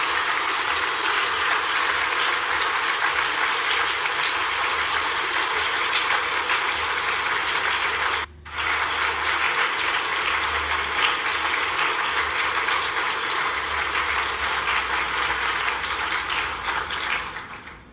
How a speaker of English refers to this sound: The other people, the participant of the fucking show that they're putting on in Ukraine, yes, they need to clap for them. Put on the spell on the masses. Clap.